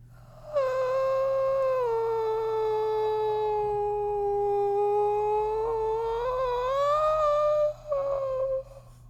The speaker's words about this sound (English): There's a scream here called "I'm drowning in a well. Please come help me." Here, listen to this one.